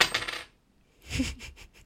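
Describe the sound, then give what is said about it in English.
A coin is flicked with a short metallic ring, then lands on a hard surface, clattering and rattling in quickening bounces as it settles. No voices. “So do you want to do the honour of flipping the coin for the first time?”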